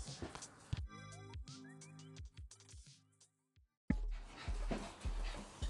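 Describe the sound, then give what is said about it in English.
Two female dogs on heat pant and scuffle while humping, with a stretch of high, wavering whines in the middle before a burst of rough, noisy movement and breathing. “Man, you've got these dogs that are like on heat and they're both humping and they're both girls.”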